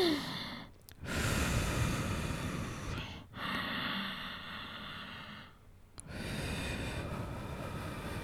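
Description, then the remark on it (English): A slow, deep breath drawn in and let out during meditation, repeated in long airy rushes of breathy hiss separated by brief pauses, fairly loud with no talking. “And the meditation amounted to getting a relaxed position, focusing on the breathing, imagining you're inhaling as water coming up.”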